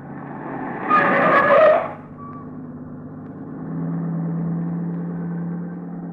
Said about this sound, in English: That car that just passed. Snappy job, huh?